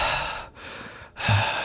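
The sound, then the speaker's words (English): Someone imitates heavy mouth breathing, as of a woman mouth breathing in someone's ear while reading from a Haynes manual on changing the gasket on a 1998 Ford Escort: three loud, airy, rasping breaths in quick succession, with brief pauses between them and no talking. “Well, she's mouth breathing and reading at the same time.”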